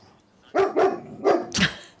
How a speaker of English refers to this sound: I have no idea why he started barking. He's off in the other room now. Dogs will do that.